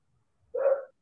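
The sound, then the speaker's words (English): One of the speaker's dogs gives one short, sharp bark, with quiet around it and no talking. “Sorry, my dogs.”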